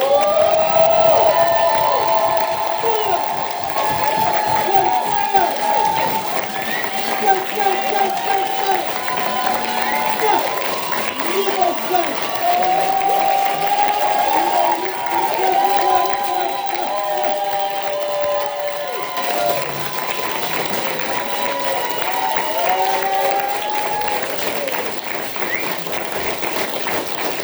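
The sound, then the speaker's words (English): A crowd applauds and cheers steadily for nearly half a minute for the Open Doors Reality Poets at a poetry performance, with dense clapping under loud whoops and shouting voices that stay strong throughout. “One more time for all of the Open Doors Reality.”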